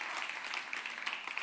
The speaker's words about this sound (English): That was awesome. So thank you to our worship team. Yeah, you guys can clap for them. That was cool.